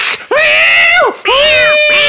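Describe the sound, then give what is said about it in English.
A quasi-feral cat screeches loudly in three harsh, high-pitched yowls. The first is long and arching, then two more follow in quick succession, with no talking. “Whoa, take it easy there, quasi-feral kitty.”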